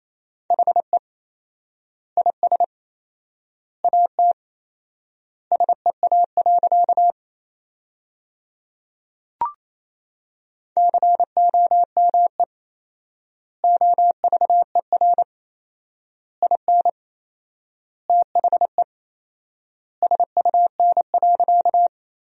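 Morse code at 28 words per minute with four-times word spacing, sending sentences built from the 300 most common words: crisp, steady mid-pitched beeps in quick dots and dashes, grouped into words with long silent gaps between them, plus one brief click partway through.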